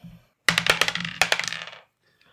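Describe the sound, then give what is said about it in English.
Dice clatter and tumble across a hard table as they are rolled: a burst of sharp, rapid clicks that bounce and settle over about a second, fairly loud, with no voices. “Dice? Cool. Sure.”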